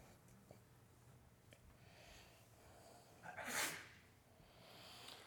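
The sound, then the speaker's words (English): A single sharp sneeze from a person in the audience during a sermon, a short noisy blast against a quiet hum, with no talking around it. “Bless you in the name of the Lord.”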